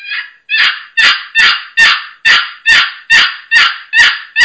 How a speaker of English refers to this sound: Okay, and then, like you're saying, low and slow, and that raspy hen on this box, it just, listen to this.